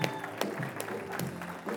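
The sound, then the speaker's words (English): A crowd claps together in steady, dense applause as a hand clap of praise to God, with sharp individual claps popping through a continuous wash of hands. “Give God a big hand clap of praise all over the house today.”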